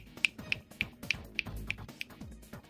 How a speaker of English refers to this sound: I'm going to snap my fingers.